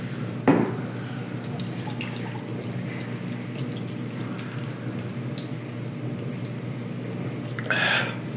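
Someone chugs a vodka drink in one long continuous gulp, with a steady wet gurgling of liquid, a sharp knock near the start and a louder sloshing burst just before the end.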